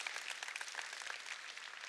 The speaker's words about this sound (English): Why don't you go ahead and clap your hands for the people to your right and left that are here today?